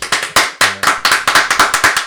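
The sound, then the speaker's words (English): Quick, loud hand clapping congratulating someone on their engagement: about a dozen sharp, bright claps in a fast, slightly uneven rhythm, like brief applause from one or two people, with no talking. “I'll give you some applause.”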